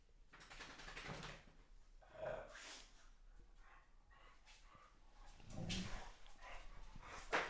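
Dogs play-fighting, trying to bite each other's rear ends, with snorts, huffs and scuffling plus a few short bark-like yelps scattered through. Fairly quiet, with no one talking.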